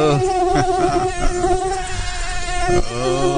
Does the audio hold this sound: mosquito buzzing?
yes